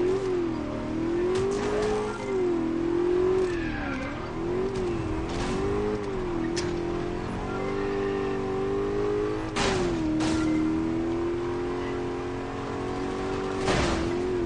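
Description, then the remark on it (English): A racing car engine revs and accelerates continuously, its pitch rising and falling through gear changes, with a few sharp bursts of tire squeal or impact noise over the steady, loud drone. “Got that engine warmed up? Let's race.”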